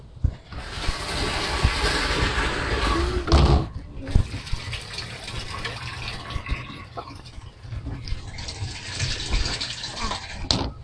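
Steady rushing water from a motor-driven pump pours continuously into a tank, a broad gush with a brief surge and a slight pause near four seconds, plus faint low mechanical rumble of the motor underneath.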